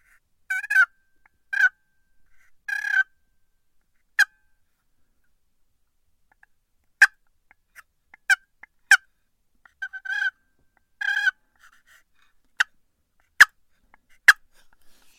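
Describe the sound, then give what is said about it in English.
Soft turkey clucks and purrs made on a call to let a turkey know someone is there: brief rolling purrs mixed with scattered sharp single clucks, spaced irregularly with quiet gaps, fairly quiet, no talking. “Just a couple real soft clucks and some purrs. Just letting the turkey know.”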